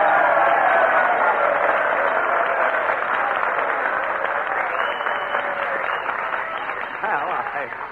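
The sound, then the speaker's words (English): A crowd bursts into sustained applause encouraging Jack Benny to come up and play a violin solo, a dense, steady wash of clapping that stays loud throughout and eases off slightly near the end. “I'm sure that with a little encouragement and applause, we can get Jack Benny to come up here...”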